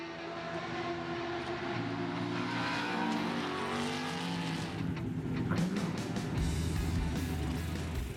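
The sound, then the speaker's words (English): A race car engine roars steadily and loudly, its pitch shifting and revving in layered harmonic whines, with a brief rattling burst near the end and no voices. “So let's watch this video to see how we're supposed to live like lightweight race cars.”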